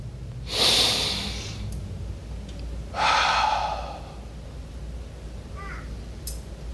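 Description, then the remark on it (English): A speaker demonstrates breathing with two deep, noisy breaths, a sharp inhale followed a couple of seconds later by a long, airy exhale, with no talking in between. “There's not one thing you can do by not breathing God's air.”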